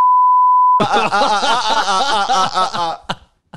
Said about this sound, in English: Do not say it. Do not say it. He's got... Beep it.